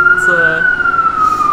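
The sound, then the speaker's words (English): The siren of a fire truck, the third fire truck to come by, wails loud, one long sustained tone that slides gradually lower as it goes by, with a faint murmur of voices underneath. “We got a third fire truck here.”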